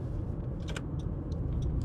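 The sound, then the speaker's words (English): A car comes out really fast and speeds past behind the speaker, a steady low roar of engine and road noise lasting the whole moment, dotted with a few brief, faint high ticks. No one speaks. “Car came out really fast behind me then.”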